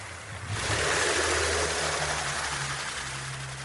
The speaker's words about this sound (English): somebody way in the distance started a little outboard motor on a little skiff and went driving away and completely drowned out all the recording I was trying to make.